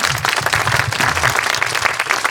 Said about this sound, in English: If we got a round of applause for Mr. McCann.